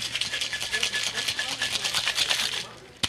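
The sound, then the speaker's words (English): Ice rattles hard inside a cocktail shaker holding organic lemon vodka, Fruit Labs organic hibiscus liqueur and fresh lime juice, in a fast, steady rhythm of bright, clattering bursts for nearly three seconds, ending with a single sharp knock. “Shakeity shake.”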